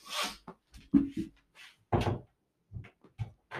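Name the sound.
door being closed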